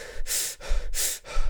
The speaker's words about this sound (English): … sucks in air faster and faster.